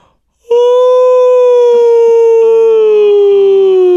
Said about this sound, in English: This yawn will last at least 5 seconds.